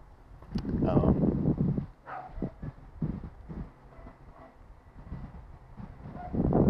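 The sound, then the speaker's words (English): Dogs bark in a string of short, uneven bursts, a loud cluster at the start followed by scattered sharper yaps, over a low, steady background rumble. “And I might have to get up if these dogs are going to keep barking.”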